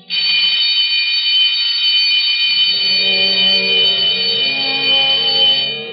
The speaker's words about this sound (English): When the time for closing bell rang in the public library, Alexander Bonaparte Cust started, picked up his battered briefcase with the almost faded initials ABC, closed the book he had been reading, and shuffled over to the librarian's desk.